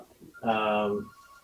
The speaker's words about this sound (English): Hold on a second. I got my phone is going off.